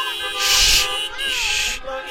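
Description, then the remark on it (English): A car horn beeps twice, two sustained, bright, buzzing honks of under a second each with a short gap between them, loud and harsh over faint background sound. “Stop beeping your what's going on here?”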